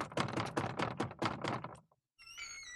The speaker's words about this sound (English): I'll just walk up to this house. It's a lovely decoration. They have a skeleton out front, a wreath that says Happy Halloween, and a couple jack-o'-lanterns. I'm just going to knock on the door here.